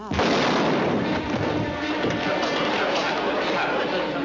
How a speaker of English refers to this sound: You're right, that was a gunshot you heard. That was the signal that brought all the trouble out in the open. It's a scene from our new picture,